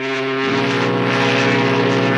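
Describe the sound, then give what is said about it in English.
A loud, sustained foghorn blast: a deep, droning horn tone rich in overtones that holds steady for a couple of seconds, with its pitch stepping slightly lower early on. No one speaks. “It's been way too long since we've heard that foghorn.”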